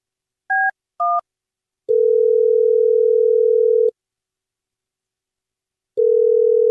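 After a phone line goes dead, two quick keypad beeps give way to a steady, humming dial tone that drones for about two seconds, cuts off, then returns. No voices.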